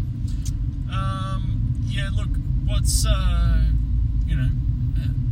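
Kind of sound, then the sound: vehicle, car interior rumble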